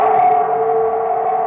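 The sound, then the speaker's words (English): A werewolf howl built from mixed animal sounds: one loud, sustained, wavering cry with a steady mid pitch and a slightly processed, siren-like edge, holding for over a second with no talking. “Someone said it's a mixture of a real wolf and an elephant, and then someone else said it's that and they play it backwards, but then John Landis said there's like 7 different animals that are used to create that, so I don't know”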